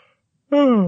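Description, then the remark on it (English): After a short silence, a loud voiced yawn bursts in, its tone sliding slowly downward and still going when the sound cuts off. “Can I yawn loud enough for the listeners at home to hear it?”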